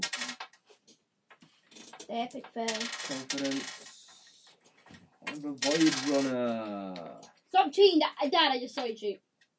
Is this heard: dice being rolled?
yes